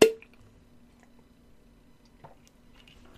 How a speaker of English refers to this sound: Yeah, that's a nice-ass bottle. Yeah. Oh, it's one of the ones that has, like, the seal tops. Yeah. Oh, cool. You made that pop.